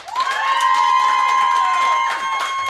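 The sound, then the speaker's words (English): A live audience claps and cheers loudly for a few seconds to vote for the contestant they want to win, a dense wash of clapping with a sustained high shout or whistle riding over the crowd noise. “clap it up”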